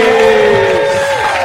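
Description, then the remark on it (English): A packed, full-house live audience at a Live from the South Side show cheers loudly and steadily, a dense wash of crowd noise with a sustained high whooping tone riding on top for about a second and a half. “Full house, full crowd participation.”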